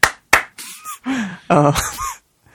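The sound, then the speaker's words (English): Two light, crisp hand claps spaced about a third of a second apart, followed by a stretch of wordless vocal sounds with rising and falling pitch. “I'm clapping my hands.”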